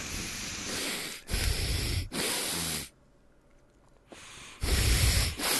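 Loud nasal snorting and whistling blown straight into a microphone: several harsh, breathy bursts, a brief quieter lull with faint sniffing, then another forceful blast. No one speaks.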